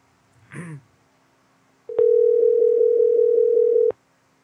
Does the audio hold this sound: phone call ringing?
yes